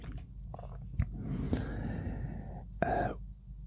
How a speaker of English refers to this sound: So I'm doing my zip. That was my... You just heard this, didn't you? Was my trousers. It was my cardigan. Because I'm old, I wear cardigans.